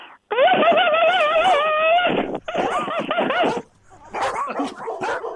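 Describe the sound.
A caller on the radio show Dog Talk on 610 CKTB loudly imitates a dog as an encore, with a run of high, wavering, whiny barks and yips, a brief pause, then another burst of yappy barking.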